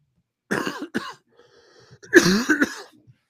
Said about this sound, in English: Sorry, I had a cough and I muted and then I didn't unmute properly. Still working out a cold there.